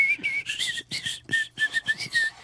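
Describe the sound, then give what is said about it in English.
A thin, breathy whistle made through the teeth, sounding as a string of short airy notes that rise and fall, with lots of hissing air and no talking. “Now, the first way is the tooth whistle.”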